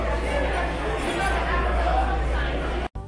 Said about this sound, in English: You probably heard a second ago this weird crowd noise. Which was Cracker Barrel, which I said that when I was there.